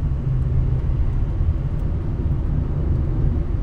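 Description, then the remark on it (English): Steady, loud low-frequency rumble fills the whole stretch, a muffled boomy noise from a microphone being held on its sensitive part, with no speech over it. “You're holding your microphone on the part where it's sensitive.”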